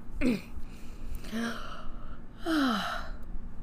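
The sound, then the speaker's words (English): A drawn-out, fairly loud yawn with breathy voiced sighs that slide downward in pitch in several stretches, and no talking. “But sorry about that yawn.”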